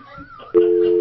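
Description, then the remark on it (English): A loud, steady telephone line tone from a studio phone line being tested cuts in abruptly about halfway through and holds unbroken to the end, following a quieter stretch of faint murmuring and a wavering background tone. “We haven't even tested the phone line. Oh, my God. That works. Wake the dead.”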